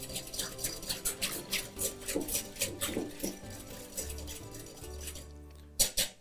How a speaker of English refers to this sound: And then here's my milk and creams up to the boil. I'm gonna slowly whisk that into the egg yolks and the sugar.